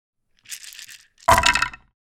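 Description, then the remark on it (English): Dice rattle and clink together briefly, then tumble out in a louder clattering burst against a hard surface as they are rolled for initiative in a game. No voices are heard. “if you have like a couple of them and you ring them together, they make a cool sound”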